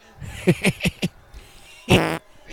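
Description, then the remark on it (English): A voice imitates flatulence: a quick series of four short sputtering pops, then one longer, louder, buzzy raspberry, with no other sound around it. “I'm a professional fart maker, fart noise maker.”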